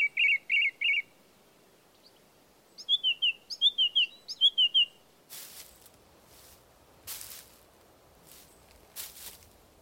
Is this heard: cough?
no